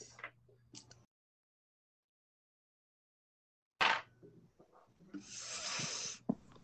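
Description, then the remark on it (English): Two six-sided dice rattle and tumble across a table: a brief clatter, a pause of silence, then a sharp knock followed by scattered clicks and a longer rolling rasp that stops abruptly. “Oh my god, what the heck, dice?”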